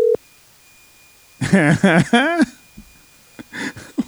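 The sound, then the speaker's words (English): A single short electronic phone tone beeps at the very start as a call is placed by accident when a phone is tapped, then stops as people begin talking over a faint steady high whine. “I just got a call from you.”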